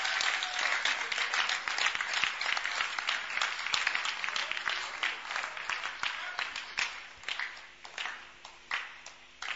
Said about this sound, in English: Please clap, please clap. The clapping helps tension to calm down.